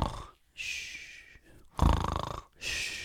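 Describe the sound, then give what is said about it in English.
Someone mimics snoring with their voice: a thin whistling breath, a loud rattling snort, then another high whistle, all in quick succession with no talking. “One of my favourite memes of all time is inside of you there are two wolves. One that snores like...”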